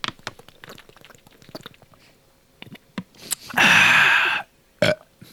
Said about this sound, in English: So burping and farting into the microphone was not listed as a pet peeve.